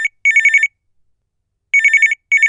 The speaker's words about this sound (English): But one morning, the phone rang.